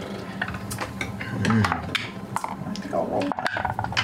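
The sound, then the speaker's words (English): Several dice clatter and rattle across a hard tabletop in a run of quick clicks and bounces as players roll stealth checks, with faint voices murmuring in the background. “We'd like everyone to go ahead and make stealth checks, please.”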